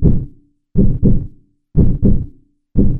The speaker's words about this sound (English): The human animal averages 60 to 100 heartbeats a minute. To me, that's like the Goldilocks heartbeat. Not too fast, not too slow. Just right. You know, as heartbeats go.